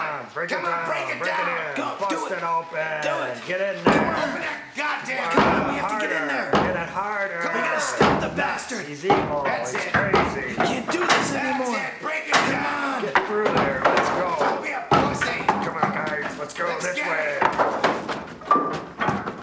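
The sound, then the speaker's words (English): Repeated heavy thuds and bangs against a door, irregular, as someone tries to force it open, with voices carrying on throughout underneath. “Yeah, just all like pathetically delivered as they're sort of really, really lacklusterly trying to get the door down in this place.”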